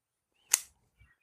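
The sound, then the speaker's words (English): A single sharp, crisp snip from a cigar cutter making a straight cut on a Diesel Crucible cigar, fairly loud with a quick bright decay, followed by a faint soft thud. “I went straight cut.”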